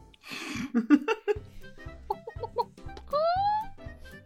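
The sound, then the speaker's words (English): Several people imitate chickens, making a run of short clucks and bawks that end in a drawn-out, rising squawk; the voices are fairly loud, with no speech. “I'm impressed with everybody's chicken noises.”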